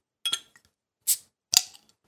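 A bottle of Merry Monkey beer being opened: a bright metallic clink, then two sharp hissing bursts about half a second apart, crisp and fairly loud against silence, with no one talking.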